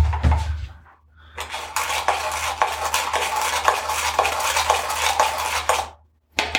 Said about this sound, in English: I'm just whisking it all together.